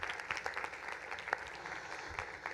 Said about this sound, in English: Can you guys give him a round of applause? That was awesome.